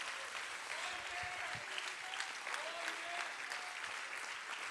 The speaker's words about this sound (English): Oh, clap your hands to the Lord if you believe that.